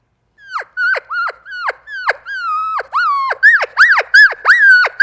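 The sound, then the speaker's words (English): A voice imitates an excited cow elk coming in to a bugling elk caller, with a rapid string of high, squeaky mews and chirps, about a dozen short calls that grow louder and quicker, each sliding sharply downward in pitch. “And here's the sound they make when they're coming into me. Some are silent, but a lot of them are like this.”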